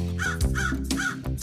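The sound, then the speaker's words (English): Harsh, repeated caws from crows, three or four loud calls in quick succession, prominent with no talking over them. “Some birds just came and took Aaron away.”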